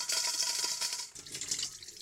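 Water pours steadily from a water pick tool into a pot for cooking pasta, a continuous hissing splash that shifts slightly in tone partway through as the vessel fills. No voices.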